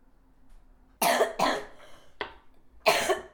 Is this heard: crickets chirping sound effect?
no